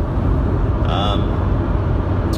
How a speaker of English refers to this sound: And as you can hear at the moment, I'm back in my car. And the car for me is a place of solitude, I think. And it's a place where I can get my head together.